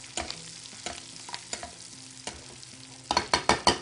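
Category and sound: food or drink, butter sizzling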